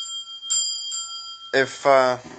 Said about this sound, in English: ring bell. Ring bell. Ring the bell.